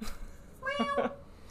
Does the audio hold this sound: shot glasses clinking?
no